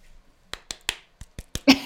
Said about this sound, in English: I'm slapping myself in the face. Okay. That's a wake up call for anybody who's listening.